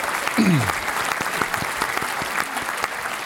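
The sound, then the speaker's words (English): A burst of steady applause from a small group, dense rapid clapping that holds at an even level throughout, with a brief low whooshing sweep near the start. “Got to get the round of applause”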